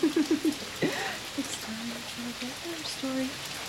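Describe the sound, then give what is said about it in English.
Heavy rain pours down in a steady, dense hiss that fills the whole clip, while a few short vocal sounds and murmurs break through underneath. “Okay, lots of rain coming down.”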